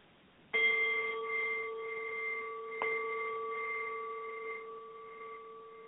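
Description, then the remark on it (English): Meditation bells ring out in two clear strikes, the second about two seconds after the first, each leaving a steady, shimmering tone that hangs and slowly fades. No voices are heard. “And as you hear the bells, just breathe love into your heart and nowness and peace.”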